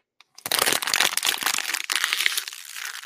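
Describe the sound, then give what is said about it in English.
A plastic water bottle is crushed in a burst of loud, dense crackling and crinkling that lasts a few seconds, with no voices. “You drink a bottle of water. You smash it like this.”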